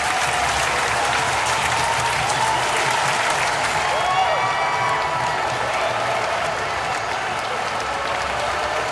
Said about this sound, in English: Hey, thanks for the applause, guys.